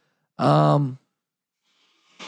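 A single loud, honking nose blow lasting about half a second, with a buzzy, tonal quality, followed by silence and a faint breathy rustle at the very end.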